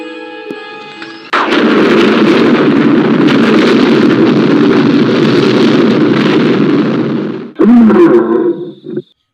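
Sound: lion roar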